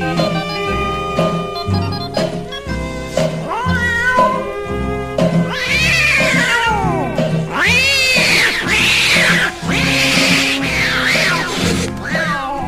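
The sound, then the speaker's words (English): Loud, drawn-out caterwauling of an old tomcat starting a fight: wailing yowls that swoop up and down in pitch, growing wilder partway through, over a steady rhythmic musical backing with no talking. “Now on that very same night, now that old tomcat started a fight, and this is the way it all did sound to me.”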